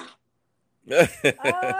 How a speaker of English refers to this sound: What is that? That's Eddie. Is that a that's Eddie coughing up a fur ball. Yeah. About this one. Sounds like a duck.